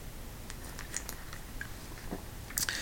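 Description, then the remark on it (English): Someone takes a quiet sip of beer because a cough is coming on, with small wet mouth clicks and a soft swallow over faint background hiss. No one speaks. “I had to take a little sip of something. I was feeling a cough coming on. And it's beer, and I like to have a sip of beer.”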